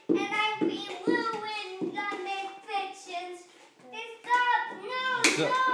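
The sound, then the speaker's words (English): A young girl slaps puzzle pieces while another child tries to build the puzzle: a few sharp, irregular smacks, mixed in with nearly constant high-pitched whining and babbling from a young voice. “Now I'm about to get in a fight because one's trying to build a puzzle and the other one's sitting on the puzzle and she is slapping the puzzle pieces.”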